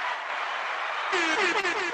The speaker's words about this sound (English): Should I do the crowd? I'm gonna do the crowd.